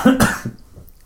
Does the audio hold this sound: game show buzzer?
no